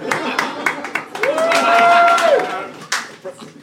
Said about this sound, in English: One dude applauding, the most sarcastic applause I've ever heard. I think, but also it started as normal applause, then he realised no one else was joining him, so he's like, ah, actually, I didn't enjoy it.